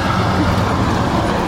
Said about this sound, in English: Big truck. Yeah. There they go. Funny thing about that truck is that it's so big and heavy, it actually can't go much faster than the speed limit.